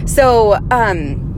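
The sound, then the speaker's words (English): Steady low road rumble fills the cabin of a car moving with traffic, with a person's voice making two short, drawn-out vocal sounds over the engine drone. “Anyway, welcome to the car with me.”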